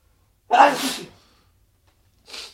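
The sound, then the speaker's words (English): A single loud human sneeze bursts out, followed after a short silence by a brief, quieter breathy sniff. No one speaks. “I'm going to sneeze live on the podcast, y'all.”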